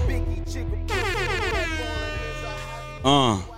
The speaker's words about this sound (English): My wife told me I need to chill on the air horn, so let me lower it a little bit.